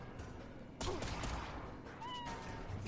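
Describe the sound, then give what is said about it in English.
A cat character in a video game battle meows a couple of times as it deals the final damage, short tonal cries rising over a dense, noisy game background, with no talking. “The kitty actually did the last final damage.”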